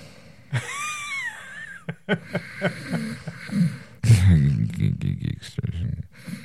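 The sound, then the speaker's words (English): A voice does a mock snore early on, a drawn-out wheezy exhale with a whistling tone. Talking follows, getting louder and more animated toward the end. “So if I hear you snoring during the show, yeah, you know, you just hear nothing, you hear.”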